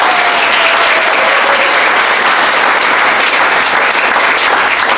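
Steady, loud applause from an audience, a dense wash of clapping that holds evenly for about five seconds with no voices standing out.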